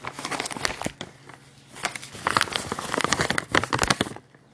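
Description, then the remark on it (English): A dog crunches on treats, giving off irregular bursts of sharp, crackly chewing with short pauses between them, moderately loud with no talking over it. “ASMR dog treat feeding.”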